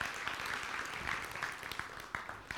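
A crowd claps steadily, dense overlapping hand claps forming a continuous, fairly loud wash of applause with a few sharper individual claps standing out.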